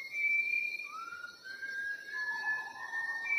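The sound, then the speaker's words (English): A whistling thrush sings in the Sumatran rainforest, recorded by filmmaker Sue Weston: long, clear whistled notes that glide slowly up and down in pitch in a Western musical scale, several tones overlapping in a steady, unbroken stream with no voices. “It's some variety of whistling thrush.”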